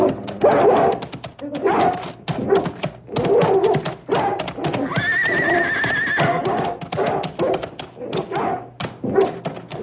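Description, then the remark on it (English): A dog turned loose to attack a man barks and snarls frantically and loudly, rapid overlapping bursts running nonstop for about ten seconds, with a high drawn-out cry rising in the middle. “Please, please turn the dog loose. Get him!”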